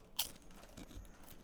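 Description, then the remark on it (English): A sharp crunch as someone bites into a crispy taco-flavored chip, followed by softer chewing sounds over the next second, with no talking. “I definitely get that corn shell, that crunchy corn shell.”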